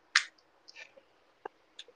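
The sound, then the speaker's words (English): A cigarette's flavor capsule gets crushed with one sharp pop before smoking, followed by a few faint scattered clicks and soft crinkling over quiet background. “I gotta click the cigarette before I smoke it, dog.”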